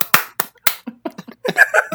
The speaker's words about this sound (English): On a count, I'm going to count 3, 2, 1, and on 0, everyone clap.